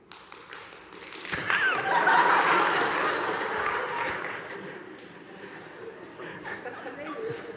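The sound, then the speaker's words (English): An audience breaks into clapping mixed with laughter and murmuring voices, swelling quickly to a loud peak, then gradually thinning out as a few scattered claps continue. “Have a moment for a slow clap.”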